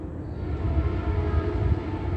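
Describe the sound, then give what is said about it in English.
A Metrolink commuter train rumbles steadily past, heading eastbound toward the San Bernardino area, with heavy low-frequency rolling noise and faint tonal whine over the continuous clatter of the cars. “That's a Metrolink train, and it is going in the eastbound toward the San Bernardino area.”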